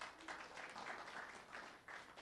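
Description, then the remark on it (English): Thin, half-hearted applause from an audience for a woman who has just read a passage aloud, a soft steady patter of scattered clapping lasting about two seconds with no voices over it. “That was such a sad applause y'all just gave her.”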